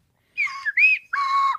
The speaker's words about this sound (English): Slide whistles ready.